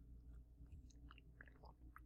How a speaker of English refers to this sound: And before I jump into the show, before I pop a freaking blood vessel, let me take a sip here of my Malbec.